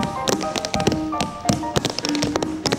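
Rapid, bright tap-dance steps clatter in a tap dancing studio in quick irregular bursts, sharp metallic clicks overlapping with a steady hum of background noise and faint tonal sounds; no one speaks.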